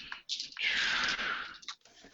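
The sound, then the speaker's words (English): Continuous rustling and shuffling for over a second as fingers dig through a soft cloth dice bag to pull out another die, with faint clicks of dice knocking together. No one speaks. “Oh, I gotta pull out another die.”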